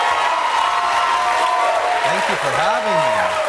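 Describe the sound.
Loud, sustained studio audience applause and cheering on The Daily Show as the guest is welcomed, a dense steady roar of clapping with whoops and shouts rising over it, voices sliding up and down through the din.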